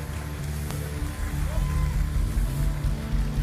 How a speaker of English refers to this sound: Give the Lord a clap offering one more time. God bless.